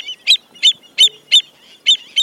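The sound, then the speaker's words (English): Sharp, repeated yapping calls from shorebirds, black-necked stilts and avocets, ring out in a rapid series of six loud notes, with no talking. “When avocets, which breed in the same habitats, add their voices to the clamor, you can understand why no sensible predator would stick around.”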